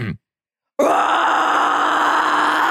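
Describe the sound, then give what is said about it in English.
After a short silence, a voice lets out a long, loud, sustained roar of furious frustration, rough and strained throughout. A person imitates the sound, with no words spoken. “Just in my reaction, then I am going to roar in furious frustration, like right in my face, right in front of you, right in front of him.”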